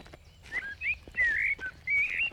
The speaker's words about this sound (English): Hearing the natural sound of birds.